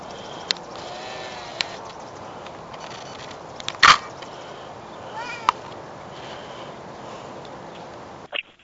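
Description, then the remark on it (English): A faint, wavering goat-like bleat rises briefly out of steady background hiss on an EVP recording made at a gravesite, with no animals in the area, and a few sharp clicks and a thump scattered around it; no one speaks. “Were there sheep in the area? Yeah, it sounds like little goats.”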